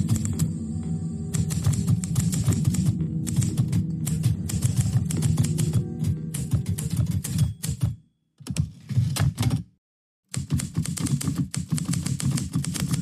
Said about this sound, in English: Something like lightning struck in my mind at that instant, and I heard a sound that would become very familiar in just a week or so. The rush of typewriter keys.